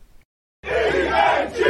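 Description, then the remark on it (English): A brief hush, then a loud stadium crowd erupts into a sustained, dense roar of cheering voices that swells and holds for over a second. “From the first pour to the crowd roar, fly, Eagles, fly.”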